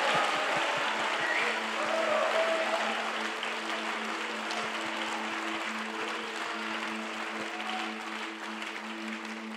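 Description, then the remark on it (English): A church audience gives the Lord a shout and a clap during a morning service, clapping loudly and steadily for about ten seconds, a dense wash of applause with a few voices mixed in, while low sustained organ-like tones hum underneath. “And in the mighty name of Jesus, we all give the Lord a great shout and a great clap this morning in Jesus' mighty name.”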